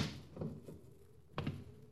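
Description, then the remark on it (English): A door bumps shut with a dull, muffled thud, preceded by faint creaking and shuffling; quiet, with no one talking. “Close the door, knuckle brain.”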